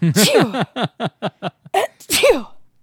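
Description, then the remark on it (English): A person sneezes after a quick run of short, rising breathy catches, ending in one loud, sharp, noisy burst. No talking is heard. “I know you sneezed right then, and that was a hint.”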